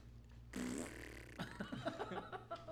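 A quiet, breathy fart sound, starting as a soft airy hiss and breaking into a run of faint sputtering pops. It seems to be a voice imitating the sound.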